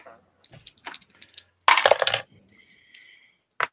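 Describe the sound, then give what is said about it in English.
Hard little clicks and rattles tumble across a tabletop, with a dense clattering burst in the middle as dice roll and settle, then a few scattered taps, as players make rolls in a tabletop game. “These dice are done.”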